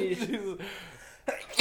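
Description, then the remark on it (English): A sharp sneeze bursts out after a moment of voiced sound, with a second short noisy burst at the very end. “Bless you.”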